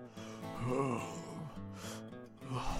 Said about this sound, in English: hobbles around the corner, breathing heavily.